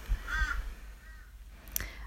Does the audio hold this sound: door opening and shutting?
no